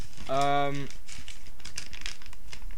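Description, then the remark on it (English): Paper is picked up and crinkles and rustles in a quick run of irregular, crisp bursts lasting a couple of seconds, with a short hummed vocal sound near the start. “Wait, let me get the paper.”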